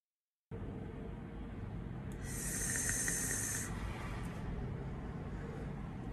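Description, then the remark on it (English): A vape coil crackles and sizzles through a single mouth-to-lung draw lasting about a second and a half, over a steady low background rumble. “When he gets to the mouth-to-lung stuff, listen to how crackly his mouth-to-lung is. This is like crackle on another level.”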